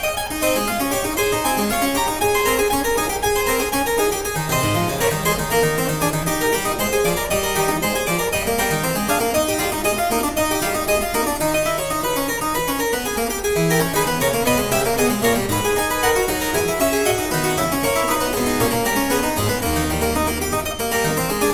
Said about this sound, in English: So let's listen to a little bit of this. This is his keyboard sonata in A major. Okay. And the catalog number, or the K number, is 113.